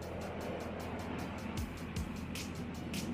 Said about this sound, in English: That loud sound, man. Y'all got airplanes flying over here? No. That definitely was an airplane. That's crazy. We out here in Minneapolis.